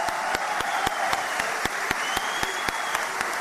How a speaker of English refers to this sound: To the rapturous applause of his parliamentary deputies, President Recep Tayyip Erdogan delivered an impassioned defence of Hamas, despite it killing more than 1,400 Israelis earlier this month.